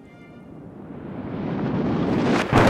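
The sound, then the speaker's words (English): Heavy rain and hail, with balls of ice, pound down on a hiking trail near a mountain peak during a lightning storm, in a dense, hissing roar that swells steadily louder, with a sharper burst of clatter right at the end. No voices are heard. “My husband yells over the rain and now hail.”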